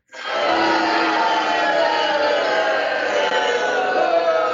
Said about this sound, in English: Well, the cat's away. Mice shall play. Someone had to get booed.